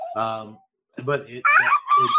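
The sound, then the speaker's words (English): Chickens let out a few short clucking calls, then after a brief pause a rooster gives a loud, drawn-out crow that carries to the end. “Yeah, because I have dumb chickens.”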